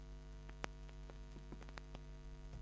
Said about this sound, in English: There's a little bit of interference on the line.